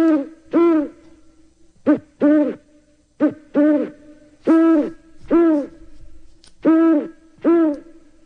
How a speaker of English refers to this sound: Here comes an owl.